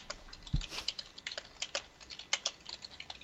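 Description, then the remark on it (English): Rapid, irregular clicking of keys on a computer keyboard, a steady flurry of light taps with one heavier thump near the start, moderately quiet, with no talking. “And whoever's typing, stop it.”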